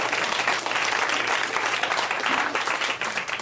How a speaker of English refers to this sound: First of all, we should clap for those two people for just being